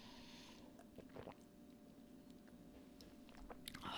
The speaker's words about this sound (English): Yeah, that's solid. That's what I needed, you guys. This is perfect. I drank like a really big sip of that. Like, I wanted to drink this entire glass. I was just like, this feels really good. I want to drink this whole thing.